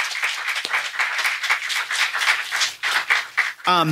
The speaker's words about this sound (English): They deserve a round of applause for being just the best. So thank you so much for being here today.